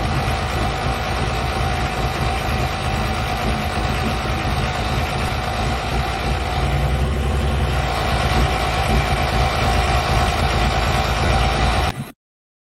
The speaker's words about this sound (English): Blair, Wisconsin, for the Cheese Fest, and we are tractor pulling.